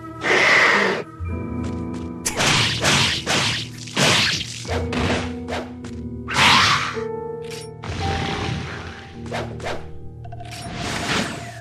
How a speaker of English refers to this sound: All right, lots of hissing, monstery sounds. Okay, the horror, sounds. Is this Onimusha? I can't place it, though. This is Onimusha.